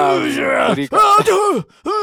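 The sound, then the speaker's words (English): A man groans and grunts loudly, then breaks into strained yells in a few rising and falling bursts separated by brief pauses, with no clear words. “He's just grunting and groaning and yelling around.”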